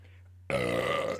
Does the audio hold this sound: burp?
yes